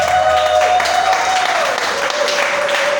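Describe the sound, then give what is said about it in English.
An audience claps steadily, a dense, continuous patter of many hands lasting the whole stretch at an even loudness, with a sustained musical tone held faintly beneath it. “All those who are clapping, may your miracle come quicker than you believe.”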